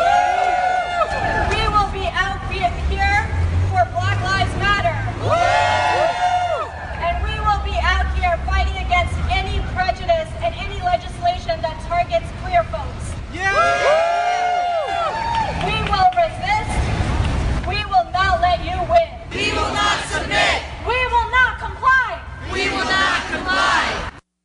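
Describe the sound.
A rally crowd at an action against the NSEERS program chants in loud, repeated bursts of massed voices, rising and falling in a steady rhythm for the whole stretch, with shouted phrases overlapping amid the noisy hubbub.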